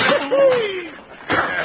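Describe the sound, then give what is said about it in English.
A punch to the face in a fight: a short smack, a falling pained groan, then another hard, sharp whack of a blow landing. “Hey, you got him right in the face”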